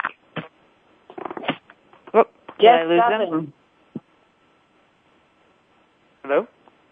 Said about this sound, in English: Yeah, hi. Sorry, the phone just broke up a little bit then.